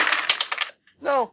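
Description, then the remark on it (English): A rapid clatter of 11 dice rolled for a security skill check, one die falling on the floor, tumbling and rattling for under a second, followed after a short pause by a brief spoken word. “I'll just re-roll you, because I don't know why you fell on the floor.”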